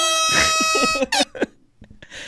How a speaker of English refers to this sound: He can you air horn it? Air horn. Yeah. Air horn for that.